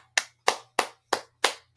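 hand clapping

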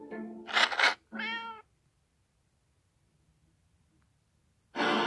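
cat meowing

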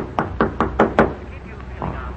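knocking on a door

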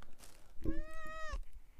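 cat meowing

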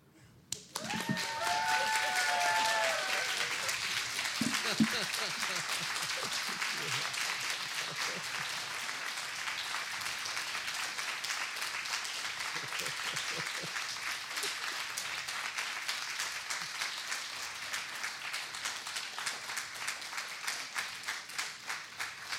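audience applause

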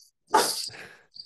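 dog barking

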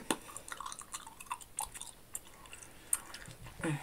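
gum chewing

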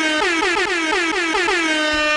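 air horn sound effect

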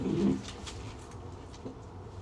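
dog growling

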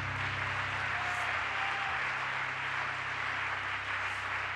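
audience clapping hands

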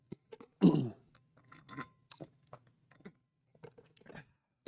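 sipping water

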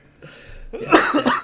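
coughing

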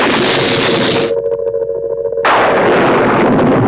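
thunderclap

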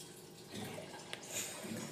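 water pouring

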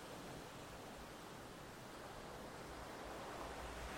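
ocean waves

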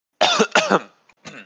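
throat clearing

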